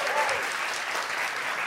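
An audience claps steadily, a dense wash of applause at moderate volume that holds evenly for a couple of seconds with no voices over it, applauding in a quiz to say the Empire State Building is an official New York City landmark.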